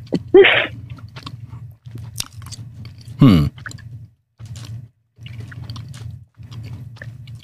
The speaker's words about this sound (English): Are you chewing into the microphone? I have my AirPods in. No. I take it out, put it in my mouth. No, don't do that.